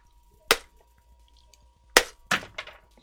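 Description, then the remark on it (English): A hammer smashes an edible chocolate doll's head in sharp, cracking blows: a single loud strike, a pause, then three quicker hits in a row, each with a brief crunchy breaking tail. No one speaks. “Okay, I'm going to keep smashing the skull.”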